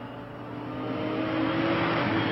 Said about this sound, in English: Adrian Conan Doyle driving a red sports car.